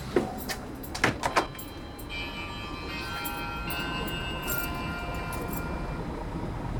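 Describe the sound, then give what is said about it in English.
A few sharp metallic clicks as a doorbell at a gate in front of a dark red door, in a laneway off a main road near a hospital, is pressed, followed by a steady, thin electronic ringing tone that carries on over a constant low outdoor rumble. “And there's a doorbell just here. So you press the doorbell.”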